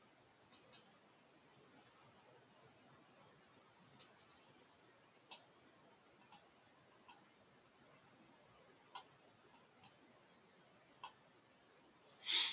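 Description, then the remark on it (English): Sharp, isolated clicks of a computer mouse button, spaced irregularly over several seconds with a quick double-click near the start, fairly quiet against a faint background hiss. “Clicking on the wrong thing here.”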